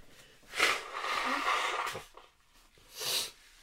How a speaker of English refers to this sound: Apologies, people, man. I really apologize for that, man. Let me blow my nose 1 second.